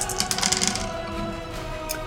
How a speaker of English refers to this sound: I'm gonna roll again here. I have 6 dice. Let's see if I can get 2 successes.